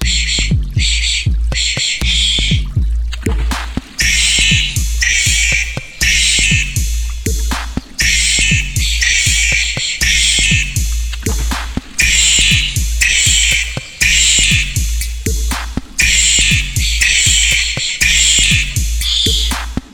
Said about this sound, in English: You just heard our scary wombat band here with some auto-tuned angry wombat noises playing through the break for you. It's a little bit of a Nightmare Fuel song, but pretty great one here.